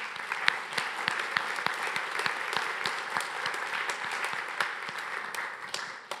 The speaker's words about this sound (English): And so I just want to publicly just give you guys a round of applause for the great work that you're doing and have done in this community. So let's give it up for them.